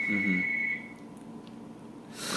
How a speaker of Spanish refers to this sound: Teléfono.